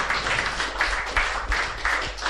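A crowd applauds steadily, a dense, crackling wash of many hands clapping together at close range, sustained throughout with no voices over it.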